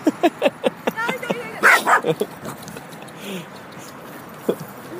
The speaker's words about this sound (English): You're all good, you're all good. Getting attacked by a tiny little dog.